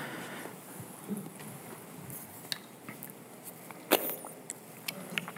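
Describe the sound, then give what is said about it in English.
Quiet sipping of water: a few soft slurps and small wet clicks scattered over several seconds against a faint hiss, with no one talking. “Did you all hear me sipping my water?”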